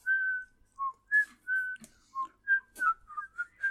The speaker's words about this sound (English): I can't whistle that high.